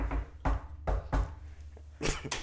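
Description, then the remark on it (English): A rhythmic pattern of about six loud knocks on a door, showing how a Jehovah's Witness knocks on people's doors, grouped with a short pause before a final quick double knock, with no one talking. “How do you knock on people's doors? I go like this.”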